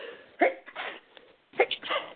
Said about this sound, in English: Excuse me. Bless you. Thank you.